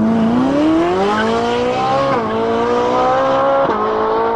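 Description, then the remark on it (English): A car engine revs hard and climbs in pitch as a carjacker drives away in a stolen car, loud, with a harsh whine like tires squealing through the acceleration. “Wait, where are you going? Hey. Come back with my car.”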